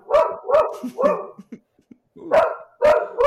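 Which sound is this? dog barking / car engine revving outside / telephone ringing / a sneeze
dog barking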